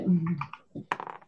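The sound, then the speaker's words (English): Dice are rolled for initiative in a tabletop game, clattering onto a table in a quick burst of hard, bright clicks and rattles, after a low murmur of voices at the start. “Oh, that's the wrong dice. I can't use that die.”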